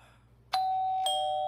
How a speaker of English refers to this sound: Who's ringing my doorbell on Christmas Eve?